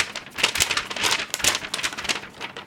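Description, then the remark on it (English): Paper rustles and crinkles in a steady run of irregular, crackly bursts, bright and hissy in tone, with no voices over it. “Your paper's making a lot of noise.”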